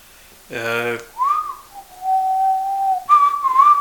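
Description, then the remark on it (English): A man whistles a cheerful tune, holding long, steady notes that rise and dip, after a brief voiced sound at the start. “Yeah, he's whistling. He's happy.”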